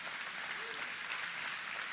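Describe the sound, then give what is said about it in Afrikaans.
A church audience claps their hands together to celebrate 161 people accepting Jesus as saviour over the last 12 months, producing a dense, steady patter of many overlapping claps that holds at an even level for the full two seconds with no clear voices. “Nou, ek denk, dis iets wat vir ons kan handen klap, is iets wat ons kan vier.”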